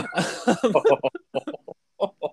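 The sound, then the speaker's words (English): A burst of harsh coughing opens, followed by a string of short, clipped coughing sounds spaced unevenly, fairly loud, apparently performed by a voice. “You just pull your mask down, cough on him, and go, "Guess who has COVID now?”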